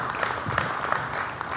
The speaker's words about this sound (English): So we all have been sharpened together because of your presence here. Yeah. We can clap for that. Thank you.